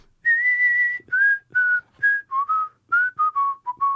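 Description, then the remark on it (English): A person whistles a short tune, starting with one long held note and then a quick run of shorter notes with brief pauses between them, no talking. “I could do a little, you know what I was like, whistling all day the other day?”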